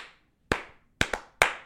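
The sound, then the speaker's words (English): Sharp hand claps made to start a camera ring out alone: four crisp slaps in an uneven rhythm with a quick double near the middle, each snapping loud and fading fast, plus a decaying tail at the start. “That's actually the secret clap that starts the camera.”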